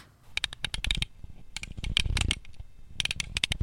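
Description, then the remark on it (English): Keys jingle in three quick shaken bursts, a cluster of bright metallic clinks and rattles with short pauses between, no talking. “I've got keys that jingle, jangle, jingle.”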